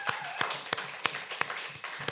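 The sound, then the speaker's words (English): An audience applauds for the recently departed Steve Ditko in a steady, dense wash of clapping, with sharper individual claps popping out at a regular beat roughly three times a second. No one speaks. “So yeah, a big round of applause, if you will, for the recently departed Steve Ditko.”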